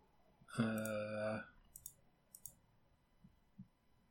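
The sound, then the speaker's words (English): A short, buzzy tone sounds first, then two quick, sharp computer mouse clicks a moment apart, clicking Spark Mandrill's name on an MMKB web page for the Ruby Spears cartoon, followed by a couple of soft, dull taps amid quiet. “Clicking Spark Mandrill's name on this page for the Ruby Spears cartoon sends me to an element of a list of cartoon iterations of Mega Man characters that does not link back to his main page.”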